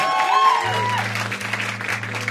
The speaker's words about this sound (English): Round of applause.